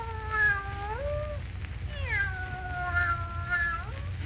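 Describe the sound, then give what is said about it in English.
A cat meows in a long, drawn-out yowl, then gives two more wavering cries, fairly loud over a low steady rumble. No one speaks. “The cat's opening its mouth. Maybe it's going to talk.”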